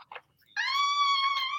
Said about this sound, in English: It's the dog.